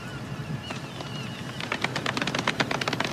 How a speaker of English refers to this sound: Could have been a golf clap because I mentioned the golf course. You had two meanings going at once. I like it. Golf clap? Golf clap.